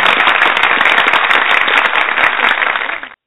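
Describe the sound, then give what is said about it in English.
A dense burst of crowd applause for a guest from Johnstown Tech Support, many hands clapping rapidly and steadily at a loud level for about three seconds before cutting off abruptly. “Give him a big round of applause there.”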